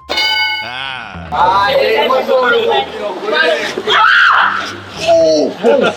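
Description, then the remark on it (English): A man lets out loud, high-pitched fake screams, as if at a spider, in several wavering bursts, after a brief metallic clang at the start, with excited voices mixed in. “It's an impressive high fake pitch spider scream.”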